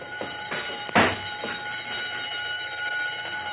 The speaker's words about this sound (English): The burglar alarm wires along the bottom of the door. A touch will set the alarm off, and who can prove a mouse didn't do it?